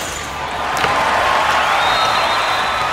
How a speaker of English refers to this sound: Everyone stood up and clapped their hands. And guess who was watching him play and clapping the most?